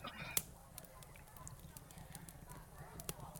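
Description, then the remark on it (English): A fire crackles to life in a large four-sided stone fireplace, with scattered sharp pops and snaps over a low steady rumble, a couple of louder cracks standing out against the softer background sputter. “this room is kind of it's got this large four-sided stone fireplace, which is kind of crackling to life right now, and it's the centerpiece of this room.”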